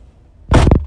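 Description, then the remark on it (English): A car door is slammed shut by a woman: a single loud, heavy thud with a quick rattling follow-up knock, breaking a near-silent background and fading quickly. “Jesus, wait, then she slammed it, dude.”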